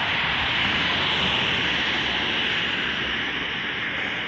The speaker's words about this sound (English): Boy, this is a lot of cars.